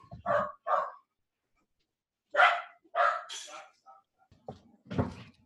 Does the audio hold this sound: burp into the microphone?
no